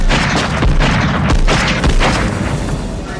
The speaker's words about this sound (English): And Carl lowers his gun and aims, and John McClane is dead to rights, huddling there with Holly. And then we hear a gunshot.